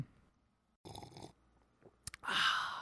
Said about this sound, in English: I hope that picked up. The slurping.